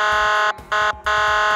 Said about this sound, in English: And finally, the air horn is a short, low blare used to scare off inattentive drivers.